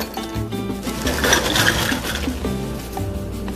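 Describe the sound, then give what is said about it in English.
Ice cubes clatter and rattle as they're poured to fill the smallest available cup, a dense, continuous jumble of clinks lasting a few seconds, fairly loud, with no talking. “I'm gonna fill up this thing with ice.”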